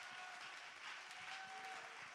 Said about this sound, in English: Come on, clap your hands one more time and give him praise.